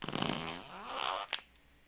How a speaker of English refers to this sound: I'm afraid it was another fart